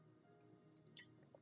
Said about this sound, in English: I'm going to drink some water on that.